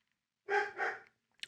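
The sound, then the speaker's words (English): Two quick, muffled, soft barks in close succession from a dog named Lucy, barking because the mailman came, with a brief breathy noise just after and no talking. “I'm going to see why she's barking.”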